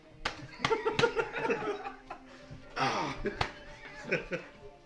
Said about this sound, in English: Alura will slap him. Answer his question!